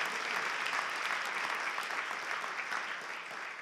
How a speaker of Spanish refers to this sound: Dar un aplauso fuerte a la casa del Señor.